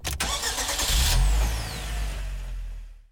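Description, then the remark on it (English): A bus engine rumbles and revs as the vehicle pulls away, heading out toward Banyas, also known as Caesarea Philippi, a deep low drone with a whining gear tone sliding downward, then the sound fades out over about three seconds. “Let's hop back on the bus here on the virtual voyage on Radio Free Hillsdale 101.7 FM.”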